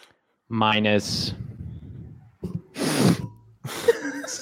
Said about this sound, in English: Did you just sniff your mic?